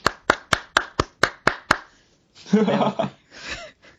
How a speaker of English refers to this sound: You just gave us the one person hand clap, which on, I'm sure people are listening to the show like, was that a single hand clap?